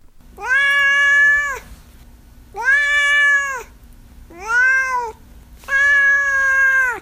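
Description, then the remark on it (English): A cat named Duarte meows four times in a row, each call long, drawn-out and loud, with short pauses between them and no one talking. “All right, now it's, of course, time for Duarte's Corner, where my cat Duarte shares his opinions on the book.”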